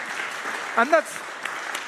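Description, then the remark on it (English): A church audience claps steadily in a dense, even wash of applause for a newcomer who became a Christian, with one brief voiced cheer rising over it partway through before the clapping carries on at the same level. “Round of applause for that, please.”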